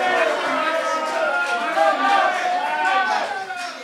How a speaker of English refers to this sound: Lots of man of the match shouts.